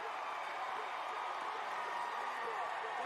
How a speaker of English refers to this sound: And everybody is clapping it up for the dude.